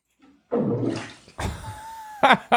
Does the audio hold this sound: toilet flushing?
yes